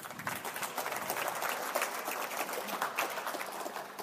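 A crowd claps steadily for about four seconds, a dense, even patter of many hands with no one speaking over it.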